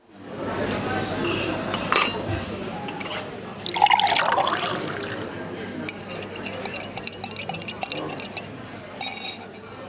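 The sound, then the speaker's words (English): Liquid pours steadily into a cup for a couple of seconds, fairly loud, followed by a scatter of light clinks and taps of dishware and cutlery. “please pour yourself a cup of kindness and take a seat with me and Mark in the Curiosity Room”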